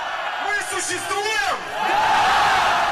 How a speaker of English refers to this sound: "We exist," the crowd shouted back.